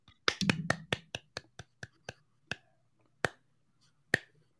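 About a dozen sharp hand claps, rapid at first and then slowing into sparse, uneven hits. They are crisp and fairly loud, with a faint murmur of voice under the opening claps.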